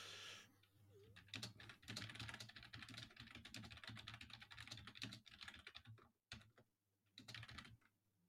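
Rapid clicking of typing on a computer keyboard, keys tapped in quick irregular bursts with a brief pause near the end, close by over a faint steady low hum.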